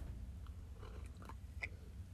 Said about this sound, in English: Excuse me. Need a sip of coffee here.